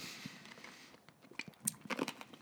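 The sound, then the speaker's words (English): Chewing and crunching of a hard candy jawbreaker (a gobstopper): irregular sharp cracks and grinding crunches, getting louder and more frequent toward the end, with no talking. “Now it's just us chewing shit, dude.”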